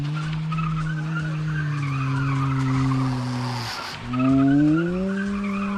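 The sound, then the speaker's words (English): A car skids, unable to stop, with a long, loud screech of tires that holds steady, dips and briefly cuts out, then wails back up in pitch before continuing. “And the ant car was coming towards him so fast, and it couldn't stop because something was wrong.”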